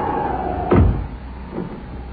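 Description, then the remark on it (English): A door is shut in windy weather with one solid thud, followed by a faint second knock a moment later against a quiet, slightly hissy background. No one speaks. “I shut the door.”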